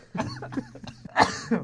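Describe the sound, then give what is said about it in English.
A quick run of harsh coughs, several bursts in a row ending in a louder hack, like a brief coughing fit with no talking. “Got me coughing in a coffin fit.”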